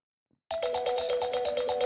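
Bright, ringing bell tones start abruptly after a short silence and repeat in a steady, pulsing pattern, layered over a dense music track, a remix released on American 12-inch vinyl, with sustained high shimmer and a low rhythmic beat.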